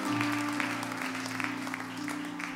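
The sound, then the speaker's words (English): An audience claps together in steady, dense applause, a hand clap of praise to the Lord, with sustained organ-like chords humming underneath throughout. “If you're thankful for the word, why don't you give the Lord a hand clap of praise for coming and speaking right where we are.”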